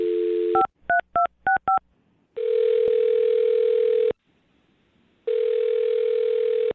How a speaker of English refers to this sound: All right, well, I'm going to dial her phone number right now and see why she's not getting back to you, okay? Okay, let's get to the bottom of this. All right, here we go.